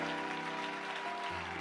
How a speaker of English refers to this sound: Would you clap your hands unto the Lord one more time? Like really clap your hands unto the Lord.